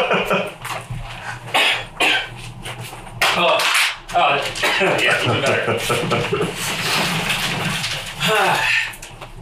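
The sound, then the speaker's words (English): Someone coughs repeatedly, a run of harsh, rasping bursts with short gaps between them and some throat clearing mixed in, filling most of the stretch. “Cough button.”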